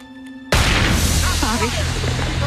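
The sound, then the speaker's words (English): After a quiet, humming moment, a single sharp gunshot fired inside a house where a gunman is holding someone bursts in loudly, followed by a sustained noisy roar with a voice briefly audible underneath. “What's going on, but we just heard the sound of gunfire from within the house where the gunman is still holding”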